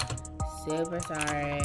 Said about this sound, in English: I'm just gonna listen to this 10 out of 10 keyboard.